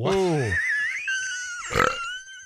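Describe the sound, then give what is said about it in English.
A small dog, held by a person, lets out a short, low, throaty burp, followed a moment later by a second brief grunting burp, fairly loud. “No, they're holding it when they burped it.”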